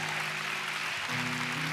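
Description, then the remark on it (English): The people sitting in the room give themselves a hand, applauding steadily: a dense wash of many hands clapping at once with no distinct individual claps, holding an even loudness throughout, with a faint low hum underneath. “Again, give yourselves a hand clap.”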